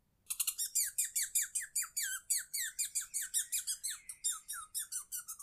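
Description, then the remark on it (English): Two squirrels screeching as they start running around the Hongemara, in a rapid, steady series of shrill, high-pitched squeaks, about four per second, loud and continuous for over five seconds with no voices. “Just then, they hear a screech as two squirrels start running around the Hongemara.”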